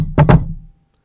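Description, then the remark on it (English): Quick knocks on a solid surface, a pair of short raps in rapid succession that fade into a low background hum, with no one speaking. “It's one followed by two short knocks, or two short followed by one knock.”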